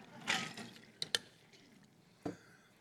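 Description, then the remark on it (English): Quiet drinking sounds of someone sipping a Mountain Dew soda: a soft fizzy slurp, then a couple of sharp little gulps or clicks and one more wet sip, with no talking. “As I drink a Mountain Dew for effect, just a second.”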